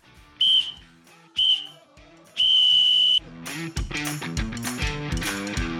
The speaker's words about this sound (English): No final whistle. Wait. No final whistle? Yeah, you need to blow the whistle real quick because I'm already late again.